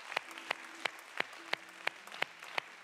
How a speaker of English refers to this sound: Amen. Let's give the Lord a little hand clap of praise.